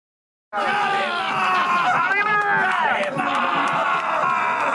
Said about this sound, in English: That is a dude shouting Kalima from Indiana Jones while tearing apart a bloody heart all over his face while people cheer on top of a burning American flag.